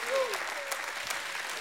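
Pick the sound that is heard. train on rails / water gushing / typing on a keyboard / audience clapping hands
audience clapping hands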